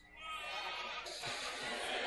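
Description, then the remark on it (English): A crowd of people bleats and lows together like sheep and oxen, a loud, continuous mass of overlapping animal-imitating voices without a break; an audience keeps up the sounds on request while the speaker walks to the front. “So oxen and sheep, let me hear you.”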